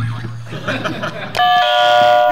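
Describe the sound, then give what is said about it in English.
Voices chatter and chuckle briefly, then an electronic buzzer cuts in abruptly partway through, a loud, steady, bright tone that holds unbroken until the end. “We have our the buzzers.”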